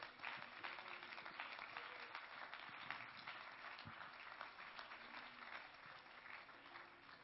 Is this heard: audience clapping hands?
yes